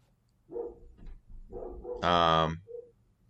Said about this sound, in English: Speaking, my dog is barking right now as you said that.